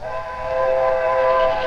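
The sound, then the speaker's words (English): A train boarded by an American president blows its whistle in one steady, loud, sustained blast, its chord-like tone holding for about two seconds over a low rumble of rolling rail cars. No one speaks. “So, for the first time in a non-election year, an American president boarded a train and took his fight to the people.”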